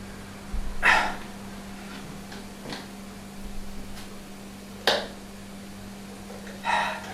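A few sharp dog barks ring out at spaced intervals, somewhat muffled as if from a playing video of an experiment where dogs judge humans by how they treat other people, over a steady low electrical hum with no one talking.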